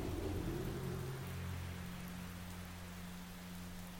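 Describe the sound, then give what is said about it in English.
Steady rain hisses across the whole clip during a thunderstorm, with a deep low rumble of thunder rolling underneath, fairly loud and continuous with no voices. “Instead, the two wait there on the shores as the sounds get stolen away by the storm.”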